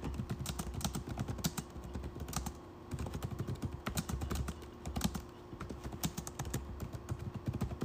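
Steady computer keyboard typing as a person types up a complaint, a rapid stream of clicky keystrokes with brief pauses, heard on its own with no voices.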